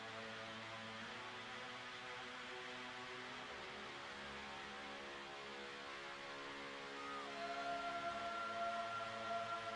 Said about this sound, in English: The siren of an ambulance wails in the background.